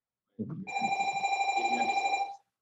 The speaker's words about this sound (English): Sorry, we had a bell.